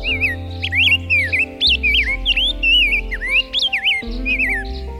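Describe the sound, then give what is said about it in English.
A rose-breasted grosbeak sings a steady run of sweet, warbled whistled phrases, clear, layered over soft sustained background music with no talking. “But funny enough, at the competition, the grosbeak was one of the things that we saw.”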